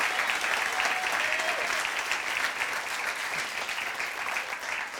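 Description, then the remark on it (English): Sustained applause from a large audience for their pastor fills the space, a dense, steady wash of clapping that holds at an even level for the whole stretch, with faint voices mixed in. “Give your pastor a round of applause.”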